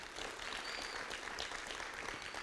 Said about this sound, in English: Come on, let's give them a great round of applause.